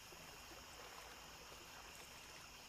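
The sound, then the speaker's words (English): Gentle lake water laps and trickles continuously, a soft, steady wash of ripples with no voices, calm and unbroken throughout. “Enjoy these 10 allegedly true scary stories from the lake as you take in the relaxing sounds of water and nature.”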